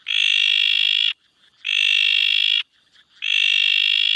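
A bleeding tree frog gives three long, loud, buzzy calls in a steady rhythm, each lasting about a second and separated by brief pauses, with no voices.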